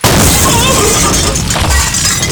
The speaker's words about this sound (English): The ambulance just blew up!